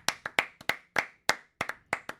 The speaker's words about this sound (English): The Washington football team hired a new president to replace Bruce Allen. First off, let me just clap about that, because Bruce Allen's gone.